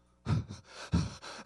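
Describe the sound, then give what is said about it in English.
Fast, heavy breathing, with several quick, forceful breaths following one another in a rapid, panting rhythm. No words are spoken. “I'm breathing fast.”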